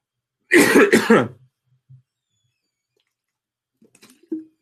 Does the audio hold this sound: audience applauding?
no